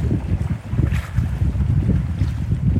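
Strong wind gusts over open water at Wawa, a steady low rumble with rough buffeting and a faint wash of waves beneath, loud throughout with no voices.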